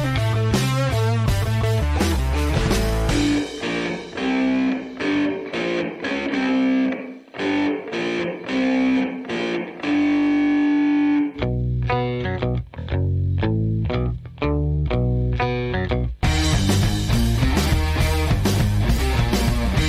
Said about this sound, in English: He recorded himself playing one famous guitar riff from every year, starting in 1965 and ending in 2022. Okay. Here's a collection of his riffs from the 1970s. Here, listen.